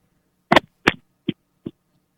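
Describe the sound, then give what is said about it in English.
Four dull, thumping slaps of a penis against a telephone handset, two loud ones close together followed by two softer ones, with no talking. “Sir, did you just slap your dick on the phone?”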